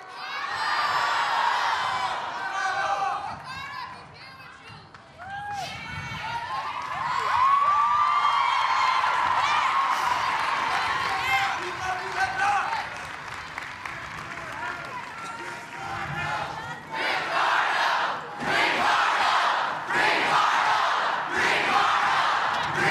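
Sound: crowd cheering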